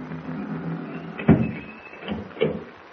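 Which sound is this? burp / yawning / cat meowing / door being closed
door being closed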